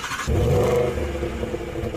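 A car engine revs up loudly, a rising mechanical roar that holds steady with a rough, throaty rumble for a couple of seconds.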